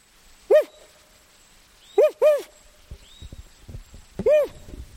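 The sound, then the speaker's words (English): A man in the Garcia River Forest imitates an owl's territorial call, like another owl in the territory, with short, rising-and-falling hoots, one, then a quick pair, then one more, loud, separated by quiet pauses with faint background rustling. “He waits, but no response, so he reluctantly makes a call like another owl in the territory.”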